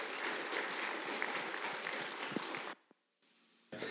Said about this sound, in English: And so as we welcome up, let's give him another round of applause as he comes up, because it's always awkward when that happens.